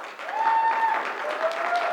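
A crowd applauds steadily for a young woman who has graduated, dense overlapping claps holding an even, fairly loud level throughout, with a faint high whistle or cheer drifting over the clapping.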